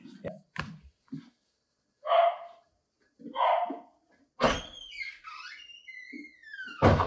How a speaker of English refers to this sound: Sorry, my dog is barking. I don't know if you can hear that.